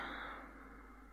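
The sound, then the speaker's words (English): A single long, soft breath taken as a breathing exercise, a steady airy rush that fades slightly toward the end, heard alone with no talking. “Are we ready? Breathing.”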